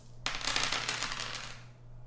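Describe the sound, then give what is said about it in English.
Four dice clatter and tumble across a hard tabletop during a tabletop role-playing game, landing three ones and a two, in a quick burst of rattling clicks that fades out over about a second and a half, with no voices. “3 best of the 4 dice”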